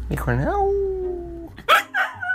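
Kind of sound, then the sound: animal, puppy whimpering and yipping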